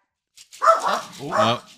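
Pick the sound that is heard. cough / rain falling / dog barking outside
dog barking outside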